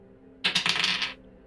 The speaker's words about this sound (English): Someone roll me a d6. You got it.